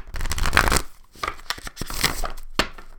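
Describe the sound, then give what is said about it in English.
Papery riffling and slapping of a deck of oracle cards being shuffled and cut, in several quick bursts with brief pauses between them, with no one talking. “I'm gonna cut a couple times and shuffle again.”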